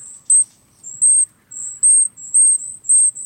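A kinglet in winter gives a rapid series of very high, thin call notes, about six in a row at a steady rhythm, clear with no voices or other sounds.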